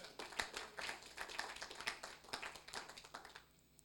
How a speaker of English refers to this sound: I think he deserves a clap this morning.